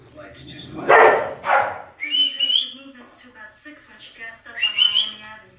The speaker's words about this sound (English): My dogs are fighting over cat food.